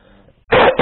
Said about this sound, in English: As you heard in that cough.